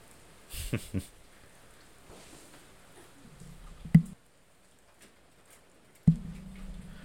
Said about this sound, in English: Oh, there's the rain.